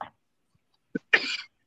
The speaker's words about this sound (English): You're coughing in the background.